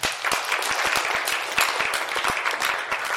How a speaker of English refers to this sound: Did you hear that, everybody? Yes. That was good. Let's give him a big hand clap.